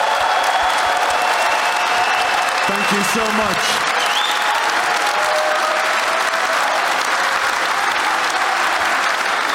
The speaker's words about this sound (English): For now, though, can we please give Mr. Ian Wright another round of applause?